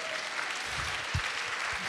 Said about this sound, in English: Because we've got Jesus. Somebody clap the Lord.